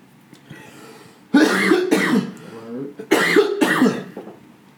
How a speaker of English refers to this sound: That's the thing about when you do drugs, you get the drug cough.